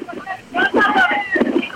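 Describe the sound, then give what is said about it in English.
Gusty wind buffets the microphone in rough bursts during a baseball game, rising and falling over a couple of seconds while a play-by-play announcer's voice carries on underneath at moderate volume. “Wind continues to gust.”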